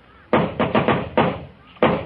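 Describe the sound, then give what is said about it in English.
Several loud, hollow knocks on a door in an uneven pattern: a single rap, a quick cluster of three, another rap, then a pause before one final knock. No one speaks. “In a minute, he'll knock on that door.”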